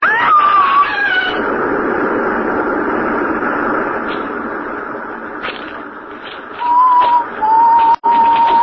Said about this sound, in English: Oh, you're screaming.